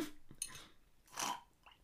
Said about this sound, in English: Oh, that was a big sip of coffee. I'm going to have to sip the last bit of the cup.